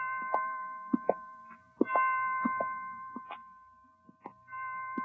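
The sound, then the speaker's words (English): Hospital chimes strike five o'clock: bright metallic chimes ring out with sustained, overlapping tones, punctuated by a series of clanging strikes at an uneven pace; moderately loud, with no voices. “Well, 5 o'clock. I didn't know the hospital had chimes.”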